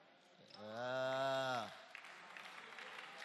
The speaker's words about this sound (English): Hey, are you clapping? Are you clapping?